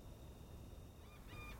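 A few faint seagull calls, thin and tonal, sound at dawn around 6 at a family campsite over a steady low background rumble, becoming clearer toward the end.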